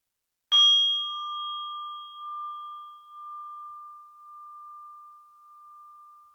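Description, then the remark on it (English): A single meditation bell is struck once to start a meditation practice, a bright ringing tone that lingers and slowly fades, with a gentle wavering shimmer, over an otherwise silent background. “Okay, we'll ring the bell to start our practice.”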